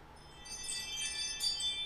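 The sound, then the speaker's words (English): Bright, shimmering chimes ring out alone, several high tones overlapping and sustaining, swelling a little toward the end; fairly soft overall, with no voices. “You heard the chimes.”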